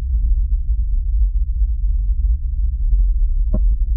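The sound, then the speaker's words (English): Amplified vibrations recorded on Mars make a continuous deep, muffled rumble with faint irregular knocks made by the arms, then one sharper clonk just before the end. No voices. “and these are the vibrations that are happening. They have to amplify the sound a little bit”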